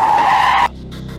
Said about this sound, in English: After the screech of her tires and a wild turn on the steering wheel,